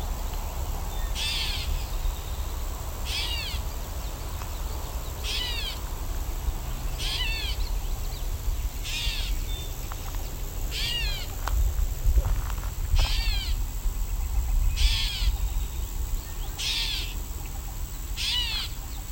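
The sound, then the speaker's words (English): A great catbird gives about ten mewing, cat-like calls, evenly spaced roughly every two seconds, clear over a steady low outdoor rumble, with no voices. “Great catbird being very talkative. It's meowing.”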